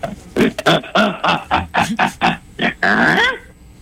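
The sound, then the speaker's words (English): People imitate the Tool Time grunt, giving about ten short, loud, throaty bursts in a quick rhythm that end with one longer drawn-out grunt. The voices sound almost animal-like, with no actual speech. “I was tool-time grunt. They were grunting.”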